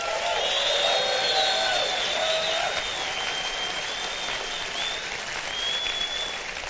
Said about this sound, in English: If you're listening by radio and you're wondering, what's the hooting and the hollering? It's just our way of saying hello, right?